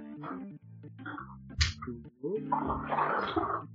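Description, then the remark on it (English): Liquid sloshes and splashes inside a bottle of Founder's Recipe Organic Maple Bourbon shaken close to the microphone, in loud, irregular bursts with a brief pause midway, while a voice murmurs underneath. “Exxon Malcolm really likes it when I shake these right near the mic”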